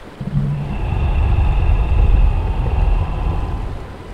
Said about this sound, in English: Max and Carolyn manage to grab a hold of one another just as Maya and Jeremiah do, but something loudly growls from underneath them.